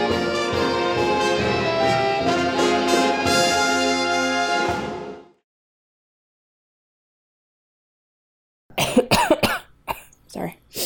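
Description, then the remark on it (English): Tonal music plays and cuts off into silence, then a cluster of several loud coughs erupts near the end in quick, ragged bursts. “Opening with a cough.”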